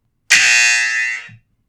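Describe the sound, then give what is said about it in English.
A single loud, harsh electronic buzz lasting about a second, with a steady raspy tone that cuts off abruptly, like a game-show quiz buzzer. No one speaks over it. “Don't say I love you guys. I will buzz you.”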